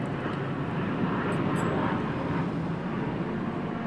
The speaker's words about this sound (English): I don't hear people very much. It's the internal combustion engine. I don't hear people.